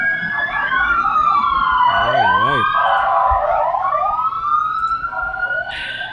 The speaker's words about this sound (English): Bro, hold on. Yeah, here we go. I mean, all I hear is sirens. Okay, let's wait for them to pass.